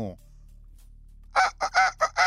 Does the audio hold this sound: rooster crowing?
yes